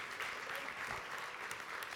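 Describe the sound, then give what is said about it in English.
Sustained applause from a crowd at a church service, a dense steady patter of many hands clapping at once, fairly loud and even throughout with no voices standing out. “Why don't you give them a round of applause?”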